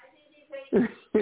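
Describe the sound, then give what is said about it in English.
Two short, harsh coughs in quick succession, coming after a brief murmur of voice, from the speaker's mother coughing downstairs in the house. “My mom's coughing down there.”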